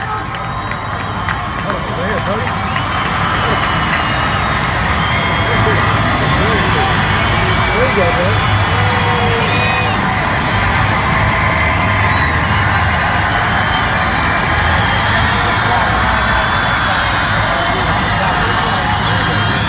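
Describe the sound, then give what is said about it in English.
A large crowd at the 2019 football training camp cheers and shouts without pause for about twenty seconds as Tom Brady walks out to the field. Many voices blend into a loud, steady roar with scattered yells rising above it. “They were popping for Tom Brady.”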